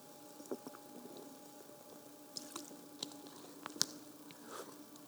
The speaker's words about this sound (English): I'm going to take a drink of water because I'm parched.